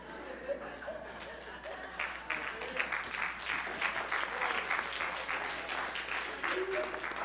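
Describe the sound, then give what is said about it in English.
A crowd applauds with dense, steady clapping that swells after a softer start and holds for several seconds, with faint murmuring voices mixed underneath. “I kind of like coming here because at least you applaud.”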